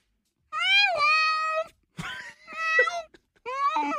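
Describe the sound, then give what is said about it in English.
A person's voice imitates an amorous duck with three drawn-out, nasal, wailing calls, the first longest, separated by a brief rough honk, loud and alone with no other talking. “How about a horny duck?”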